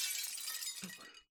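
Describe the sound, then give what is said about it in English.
Window glass shatters in one loud, bright crash, sharp fragments tinkling and rattling as it fades, with a dull low thump partway through before it cuts off. “If the door won't open, I guess I'll just have to go through the window.”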